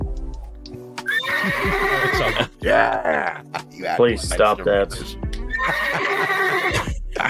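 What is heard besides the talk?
horse neighing sound effect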